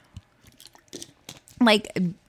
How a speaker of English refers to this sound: I can tell you, if I need some water, so I'm going to drink some water.